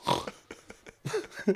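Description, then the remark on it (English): A person imitates a pig, letting out a string of nasal, grunting oinks: one loud burst, a few quick softer snorts, then two more strong oinks. “Watch him oink. Oink. I'm a piggy oink.”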